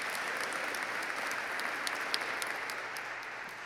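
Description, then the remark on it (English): An audience claps steadily to welcome a guest speaker called up to bring the word, a dense, even wash of many hands with scattered sharper claps standing out, sustained for a few seconds at a moderate level with no voices. “Give him applause.”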